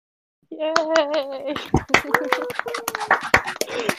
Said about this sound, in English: Yay! Should we just play like a clapping sound effect in editing? Yeah. Like in post recording? Okay.